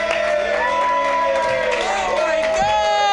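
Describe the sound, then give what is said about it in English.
A festival comedy show crowd cheers and whoops loudly and steadily as a comedian is introduced, with clapping blended into a dense wall of excited voices that never lets up across the whole stretch. “Keep clapping, everybody. Don't stop.”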